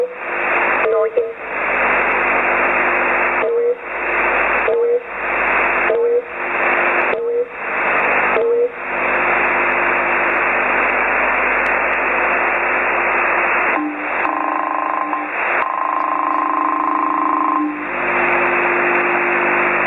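Steady, loud radio static hiss fills the whole stretch, cutting out in brief dropouts several times, with a faint warbling tone surfacing near the end.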